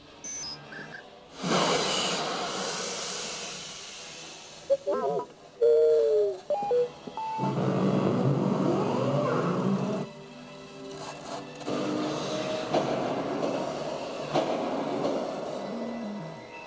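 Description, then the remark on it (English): A carbon freezing chamber winds up with a brief rising mechanical whine, then bursts into loud, sustained hissing and crackling that surges in several long waves, no voices. “Oh, I love the sound of the wind-up and the crackling of the carbon chamber.”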